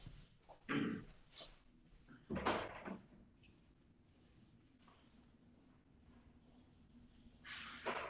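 A door is opened with a couple of solid clunks and rattles, followed by a stretch of low background hum and then a final brief scraping burst.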